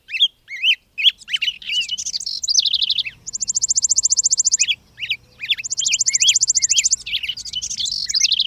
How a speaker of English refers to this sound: Early spring migrants like robins and bluebirds return north in March, some even in February. Across the whole of April, week after week, new songbird migrants work north from the tropics, adding bit by bit to spring's ever-growing soundtrack.